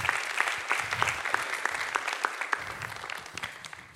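A crowd applauds steadily, dense overlapping claps filling the room at moderate volume for several seconds, with no talking over it.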